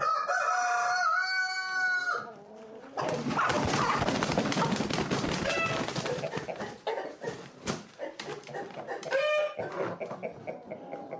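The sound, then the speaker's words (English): A rooster crows loudly, then a dense chorus of hens clucking and squawking fills the space, with more crowing breaking through near the end, as championship cocks and hens are loaded into crates. “Let's put a cock in a hen into each crate just in case two cocks start fighting.”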